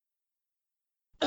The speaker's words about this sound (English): and you're going to have to excuse me. I wasn't on last week's call because I had a cough, and I, as you just heard, still have a little bit of a cough. So I'm going to do my best to mute my mic whenever I feel a cough coming on